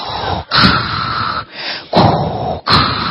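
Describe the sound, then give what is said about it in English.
A voice imitates Darth Vader's heavy mechanical respirator breathing: three loud, hissing breaths in a slow rhythm, each broken by a short pause, harsh with no talking. “And we don't know anything about Darth Vader at this point, except that he's super tall, he's wearing all black, and he has that weird breathing thing, right?”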